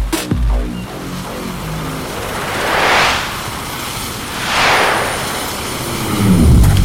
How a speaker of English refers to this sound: James with his second time taking a helicopter.